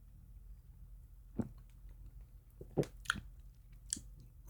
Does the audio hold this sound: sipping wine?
yes